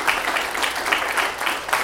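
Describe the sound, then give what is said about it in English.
Steady hand clapping fills a church, an audience giving the Lord a hand in a loose rhythmic pulse with no voices standing out. “she was the only one started giving God a hand clap”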